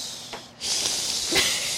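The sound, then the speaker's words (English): A big-headed snake's hiss: a short faint breathy puff, a brief gap, then a loud, sustained airy hiss that swells slightly near the end. No talking. “Again, big-headed snake with nasty, deathly hisses coming out of its mouth.”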